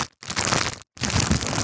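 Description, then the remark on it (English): A McDonald's fast-food burger paper wrapper being crinkled in two loud bursts of dense, rustling crackle, separated by a brief silent gap, with no voices. “I've got one more wrapper, and it's obviously not Taco Bell.”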